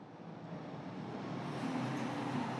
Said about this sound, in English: And so with that in mind, as another truck rumbles by,